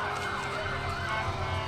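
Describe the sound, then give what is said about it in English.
A fire truck siren wails steadily and fairly loud throughout during a parade, its tone slowly rising and falling over a low engine rumble, with no voices. “Is that the old-time fire truck that they just got working”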